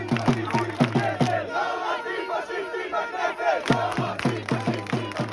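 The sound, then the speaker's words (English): A large protest crowd in Israel chants and shouts in the streets, with rhythmic bursts of loud drum hits and kazoos punctuating the roar of many voices. “To understand what's happening in Israel this week, you could start by watching all the protest videos.”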